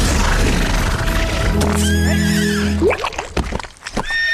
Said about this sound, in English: That's it? One little horse. I don't need that horse.